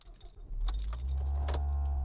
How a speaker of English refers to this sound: Okay, starting up the engine.